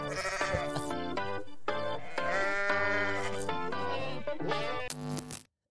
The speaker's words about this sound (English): I was hoping that you would make a goat noise yourself instead of doing the drop.